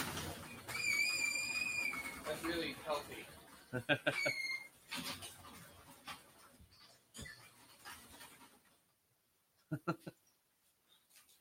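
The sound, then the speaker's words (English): A door hinge squeaks as the door swings shut, a wavering, high-pitched squeal in two drawn-out bursts, followed by a brief voice and a few soft knocks. “Door needs some grease.”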